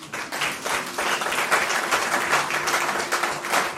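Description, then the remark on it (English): A church audience and worship team clap hands together during a service in a steady, dense burst of applause that stays fairly loud throughout, with faint voices mixed underneath. “While they go and search, oh, you want to clap hands? The worshiping team wants to clap hands.”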